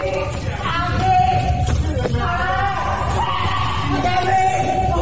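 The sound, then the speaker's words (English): A man who ran from a car screeches and yells in strained, drawn-out cries as another man tackles him down, over a constant rumbling background, loud, with a couple of sharp thuds partway through. “And we got a predator screeching here.”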